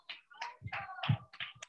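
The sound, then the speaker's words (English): A soft, scattered golf clap from a few people: light, uneven hand claps patter irregularly for under two seconds, with no voices over them. “I appreciate y'all golf claps, but hold on one second, right?”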